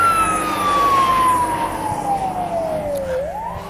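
A loud siren from three fire trucks and a paramedic truck wails, its tone sliding steadily downward as it passes, then starting to rise again over a steady rumble of traffic.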